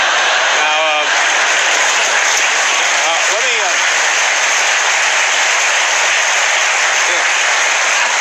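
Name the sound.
audience applause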